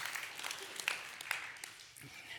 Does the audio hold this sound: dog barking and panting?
no